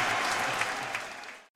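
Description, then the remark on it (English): A large cricket crowd of England and India fans, everybody on their feet, applauds a batsman steadily, a dense wash of clapping that fades slightly before cutting off abruptly near the end. “And he's getting a round of applause from everybody on their feet.”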